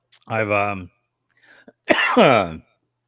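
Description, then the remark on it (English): Two loud bursts of raspy coughing after smoking a blunt in a King Palm wrap filled with 70% tiger cake and 30% animal face bubble hash: a voiced hacking sound followed after a short pause by a rougher, throaty cough, with a faint breath between them. “The coughing is a bad example of what it actually feels like.”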